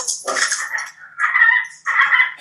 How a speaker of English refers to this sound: My neighbor's dog is just trying to attack Sochi through the glass